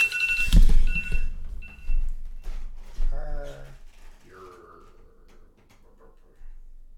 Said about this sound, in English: Oh, there's a timer.